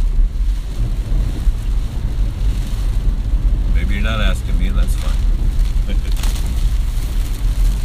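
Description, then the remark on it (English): Steady, dense rumble and hiss of heavy rain drumming on a car roof during a downpour, heard from inside the car, continuous throughout, with a man speaking briefly over it midway. “Man, it is a downpour here. It is raining hard. Not looking forward to have to get out of this car in 5 minutes and walk in.”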